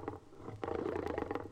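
An adult male Maasai lion growls over his daily meal, a 15-pound chunk of raw meat: a deep, rumbling, steady growl with a rough throaty texture that swells louder about halfway through and keeps churning to the end, his teeth ripping through the meat. No one speaks.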